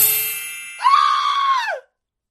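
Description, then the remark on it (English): A loud, sustained scream directly into the microphone, lasting about a second and dropping in pitch as it cuts off, preceded by a fading ringing tone. “That entire scream. That was right into the microphone.”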